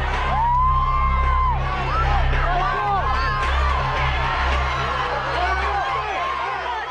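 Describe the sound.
A large crowd of fans cheers and whoops continuously, a dense wall of excited voices, as an entertainer dances, while steady, thumping music plays underneath throughout.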